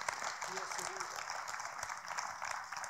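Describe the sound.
A church audience claps together for the Lord during a sermon, a steady, dense wash of applause that fills the whole moment, with a faint voice briefly audible underneath.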